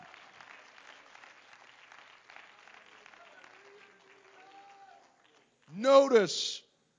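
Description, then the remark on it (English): A church audience claps hands to the Lord in a steady, dense wash of applause for several seconds, fading out before a single loud voice suddenly rings out at the end. “Come on, let's clap our hands to the Lord.”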